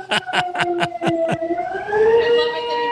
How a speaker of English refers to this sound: Oh, that's amazing. That was some pretty good timing on the alarm.